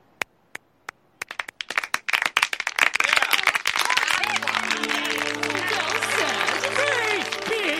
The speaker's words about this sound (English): It's silence, and then Glick starts the applause.